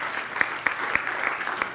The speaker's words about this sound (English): I don't know if they're applauding that it's 39 years or that I remember how many years it is.